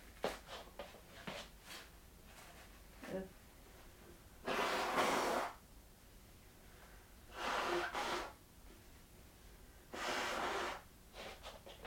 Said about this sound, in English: I'm gonna grab a Kleenex, so I'm gonna blow my nose, and then I'm gonna explain to all y'all the plan for the day. Excuse me real quick here.